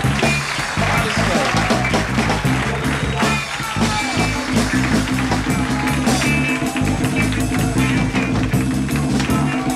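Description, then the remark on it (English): An audience claps and cheers steadily for about ten seconds, a dense, loud wash of applause over a band still playing with a pulsing bass line. The singer has called for a round of applause for his band members. “Give my fellas a great big round of applause.”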